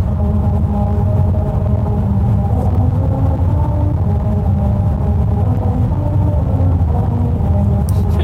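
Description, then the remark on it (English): A steady, loud road-noise drone from a road in California, with a buzzing, wavering hum like a swarm of bees, layered tones holding constant for the whole stretch with no talking. “It does essentially sound like a swarm of bees.”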